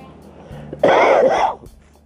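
A single loud, raspy cough bursts out, lasting under a second, with only faint room noise before and after.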